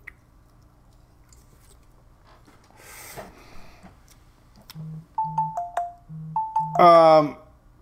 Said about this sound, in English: Man, my phone's going nuts here.